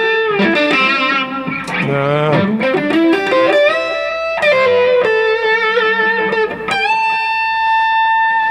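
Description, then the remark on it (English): An electric guitar played through a miniature TC Flashback delay pedal plays sustained, bending notes soaked in echo, each phrase trailing off in repeating delays; fairly loud, with no voices over the playing. “And you know, the miniature flashback from TC for Echo.”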